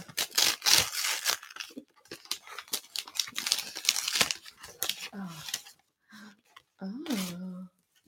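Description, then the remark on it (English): Gift wrapping paper with a seagull or dove pattern rips and crinkles as it is torn open in quick bursts, fairly loud, with short tearing strokes through the first few seconds before a voice murmurs near the end. “Can I just say it's got lovely seagull wrapping paper.”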